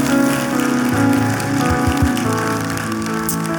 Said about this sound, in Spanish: Un aplauso a ellos, a Dios por ellos. Amén.